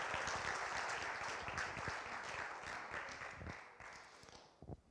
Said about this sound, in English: Can we give these guys a warm, warm Applause.